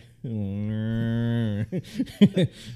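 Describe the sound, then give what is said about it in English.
A person imitates a cow with one long, steady, low moo lasting over a second, then breaks into a few quick voiced syllables that sound like laughter or speech. “I'm a cow.”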